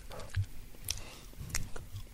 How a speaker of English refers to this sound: All right, on the count of three, everyone pop now, in your what, mouth and chew.